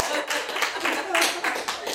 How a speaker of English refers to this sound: Clap, clap, clap.